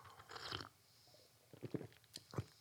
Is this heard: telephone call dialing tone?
no